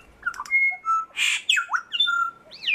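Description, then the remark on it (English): A songbird sings a rapid, varied phrase of whistles, sharp chirps, rising sweeps and a raspy buzzy note, each syllable distinct, with no voices present. “Breaking down bird song”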